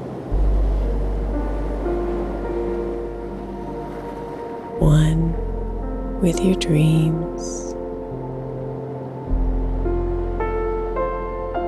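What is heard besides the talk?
gentle ocean waves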